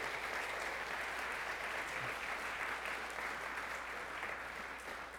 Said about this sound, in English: Thank you, guys. Let's give them a round of applause and just thank God for.